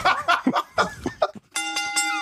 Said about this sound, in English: I don't know why I did the bell.